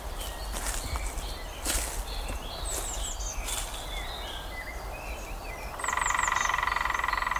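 A lesser spotted woodpecker calls near the end, a rapid, high-pitched run of repeated notes. Before it come scattered, softer bird chirps over a steady low rumble.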